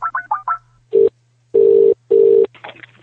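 A quick run of four telephone keypad beeps dialing a call to Reading Football Club, then loud buzzing ring-tone bursts repeating in a steady pattern over a faint, constant low hum, with a brief murmur at the end.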